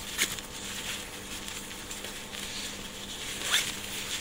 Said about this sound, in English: Zip that side and start loading it from the top.